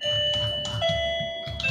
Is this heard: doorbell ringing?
yes